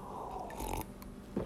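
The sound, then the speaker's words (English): A quick slurping sip of coffee from a cup, a breathy hiss of drawn-in liquid followed by a soft swallow and a brief throaty sound, with no talking. “Just getting a sip of coffee here.”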